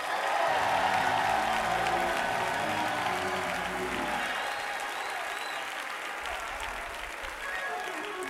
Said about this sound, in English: Clap your hands and shout, yeah.